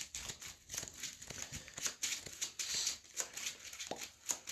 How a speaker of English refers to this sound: Of course, now I have to shuffle my deck. Discard pile into my deck because I have no deck for which to draw a card from.